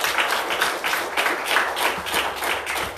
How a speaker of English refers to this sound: Let's just stand up this morning. Can we give this man of God a hand? Can we give him a hand clap?